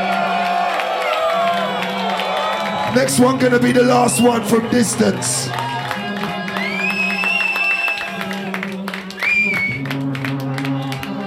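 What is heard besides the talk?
crowd cheering and applauding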